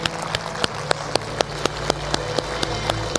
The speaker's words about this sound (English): Let's give God a hand clap this morning.